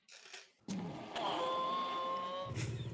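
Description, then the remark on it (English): A voice imitates a baby T-Rex roar as another take of a sound effect for a scene where the T-Rex's muzzle is taken off and it roars: a sustained, raspy, tonal cry held at a fairly steady pitch for over a second, fading out at the end, with no talking. “Can I get one more take at the baby T-Rex sound?”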